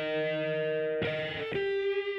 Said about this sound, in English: He just talks in guitar riffs.